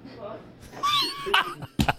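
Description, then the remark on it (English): A man cries out in pain with short, strained, high-pitched yelps and gasps, a few bursts over two seconds, muffled. “He's screaming.”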